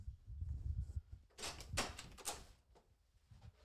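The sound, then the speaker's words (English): A door opens with a low thump and rattle, followed by a cluster of sharp latch and handle clicks, then things quiet down, as someone checks outside the door for a delivered pizza. No one speaks. “I think they dropped it outside the door. Hold on. Let me check it.”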